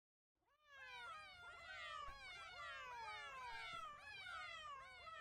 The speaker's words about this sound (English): And this one is with a cat. This one is a cat click effect. I'm going to play it so you'll hear it and see it.